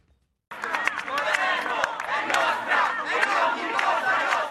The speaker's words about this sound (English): Local citizens of Palermo gathered outside the prosecutor's office in the Sicilian city, shouting that Palermo was theirs and was not Cosa Nostra's, otherwise known as the Mafia.